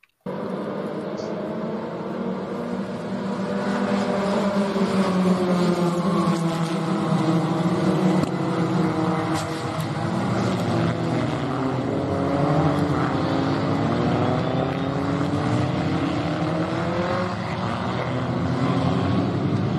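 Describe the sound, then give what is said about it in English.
Several racing car engines roar and whine continuously, their pitches sweeping up and down as they overlap, loud and steady throughout with no talking, during a multi-car crash at Mallory involving about 11 cars. “I think Phil said there was something like 11 cars involved with that, and only minor damage across them all.”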